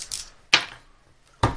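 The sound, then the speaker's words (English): A die is rolled onto a table for a damage roll in a tabletop game, clattering in three sharp, bright knocks spaced out over a second and a half, each fading quickly. No one speaks. “Then one more dice.”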